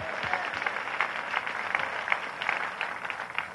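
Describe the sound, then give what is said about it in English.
An audience claps together as a clap offering to the Lord, in a dense, steady burst of applause that holds at an even, moderate loudness for the whole stretch, with no one speaking over it. “Somebody give the Lord a clap offering and say amen.”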